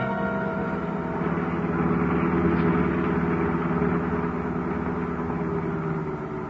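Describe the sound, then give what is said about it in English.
A car engine idles steadily outside a detention warehouse for several seconds, a constant low rumbling hum with no change in pitch, moderately loud, with no voices. “Keep the motor going”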